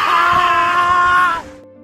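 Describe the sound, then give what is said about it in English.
A woman lets out a loud, sustained scream of horror lasting over a second, piercing, then it cuts off abruptly into quiet. “Her expression changes into one of first confusion, then disgust and horror. She screams and points at Steve.”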